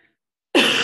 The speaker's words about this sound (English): Excuse me, I do have still have a bit of a cough, so I apologize in advance.